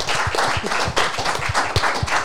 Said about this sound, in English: Big round of applause for the crew.